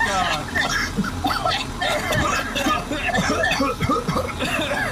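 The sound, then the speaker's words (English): Someone coughs in short, repeated bursts inside a smoking car, mixed with chuckling and overlapping voices against a steady, noisy background. “Oh, I'm coughing.”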